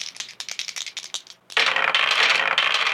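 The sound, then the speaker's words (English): Two dice rattle and clatter in quick irregular bursts, then tumble into a dense, continuous rolling clatter, with no voices. “That's 2 dice. Let's watch them roll.”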